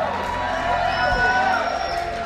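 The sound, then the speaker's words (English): A church audience applauds and cheers steadily to celebrate the worship team, with whoops rising above a dense, even wash of clapping that holds at the same level throughout. “I think you ought to give yourselves a round of applause.”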